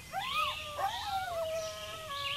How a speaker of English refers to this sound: Coyotes.